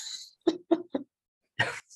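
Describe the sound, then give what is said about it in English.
Someone sneezes in a quick run of three short, sharp bursts, then after a brief pause lets out a longer, breathier burst. There is no talking. “Bless you.”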